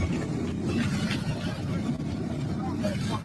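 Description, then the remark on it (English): A motorcycle convoy bringing Senator Ted Stevens to a rally at his campaign headquarters rolls by in the morning, a steady, dense low engine rumble holding for about three seconds, with indistinct voices mixed into the noise. “What you saw right there was a motorcycle convoy that brought Senator Ted Stevens to a rally at his campaign headquarters yesterday morning.”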